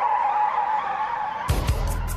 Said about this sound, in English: the tire screech at the start sounds like the Mick Foley car crash that comes in